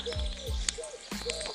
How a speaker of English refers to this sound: Oh, that's a pigeon. Is it a pigeon? Or is it I think it might be a rock dove, actually. Oh, a rock pigeon or a collared dove. Can't see it. It's up on top of a chimney.